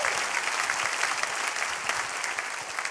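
A crowd claps steadily, dense overlapping handclaps filling the space at a fairly loud, even level for a few seconds with no voices.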